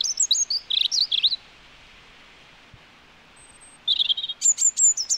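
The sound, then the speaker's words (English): A male European robin sings two bursts of high, thin, warbling phrases separated by a few seconds of quiet, clear over a soft background hiss. “So males, robins will usually start their singing about an hour before sunrise in the morning, and then they'll stop their singing about a half an hour after sunset in the evening.”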